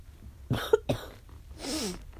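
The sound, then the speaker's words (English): Two sharp, harsh coughs from someone with a cold burst out in quick succession, followed by a raspy, breathy throat-clearing hack with a strained, wavering tone. Loud against a low background hum. “So I'm like legit coughing.”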